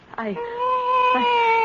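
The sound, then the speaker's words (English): A cat mews in one long, drawn-out, plaintive cry that rises at the start and then holds a steady, loud wail. “I can't strangle a cat.”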